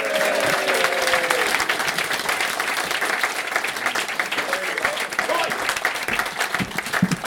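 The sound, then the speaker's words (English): A crowd applauds Stuart Ashen steadily, with dense, continuous clapping that stays loud throughout and has a faint murmur of voices mixed in beneath it. “So let's lend this same round of applause, Stuart Ashen.”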